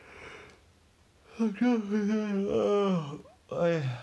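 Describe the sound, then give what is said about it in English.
A voice imitates a big, drawn-out yawn by an ogre in a story: a long, gliding voiced groan that rises and falls in pitch, followed by a short sighing tail after a brief pause. “The ogre gave a big yawn.”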